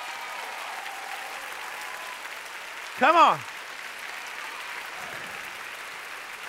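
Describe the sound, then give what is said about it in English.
An audience claps steadily, a dense, even wash of applause running the whole way through, with one loud shouted voice rising briefly above it midway. “Clap your hands like you're coming back.”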